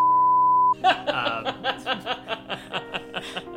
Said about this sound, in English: I'm going to have to beep that.